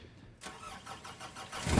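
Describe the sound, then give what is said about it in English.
An old car, probably from around 1980, is started: the engine cranks with a rhythmic, repeating starter churn, then catches and rumbles louder in the low end at the very end. Fairly loud, no voices. “Let me start my car up.”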